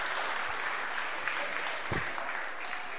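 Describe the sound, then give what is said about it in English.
A crowd claps steadily for a few seconds, a dense, continuous patter of many hands at an even loudness, with a brief low thump partway through and no voices over it. “I'm going to get you, these guys to give you a big clap, because I think you're lovely.”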